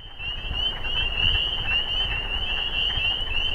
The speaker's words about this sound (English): But first, maybe you've already heard them. The spring peepers are out again. Take a listen.